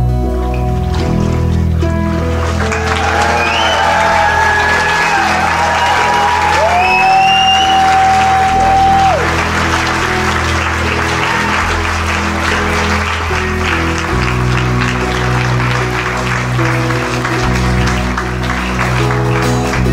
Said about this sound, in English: Big round of applause again.